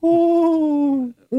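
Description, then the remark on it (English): A small owl's whinny-like call: a steady, tonal note sliding slightly downward for about a second, then a brief pause before a second call begins, loud. “It's almost like a little miniature horse in a tree. Almost like a horse? Yeah, a little whinny-like.”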